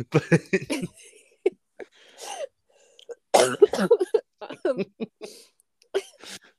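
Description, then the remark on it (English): A run of coughs and throat clearing from a person recovering from an illness comes in irregular bursts, with a short quiet gap, a strong harsh cluster in the middle, and a few smaller coughs near the end. “apologies for any like sniffling or coughing in the audio as well.”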